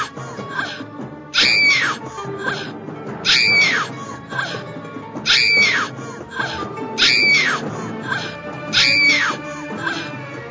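A person lets out five loud, shrill screams, each rising and falling, repeated at an even pace about two seconds apart over a steady murmur of background noise.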